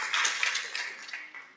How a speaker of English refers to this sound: That's worth the clap.